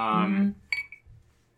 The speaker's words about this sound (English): Yeah, it's crazy how loud the glass is. I know, right? The ice cube.